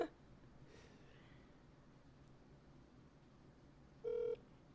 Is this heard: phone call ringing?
yes